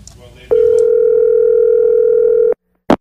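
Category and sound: signal or alarm, telephone dial tone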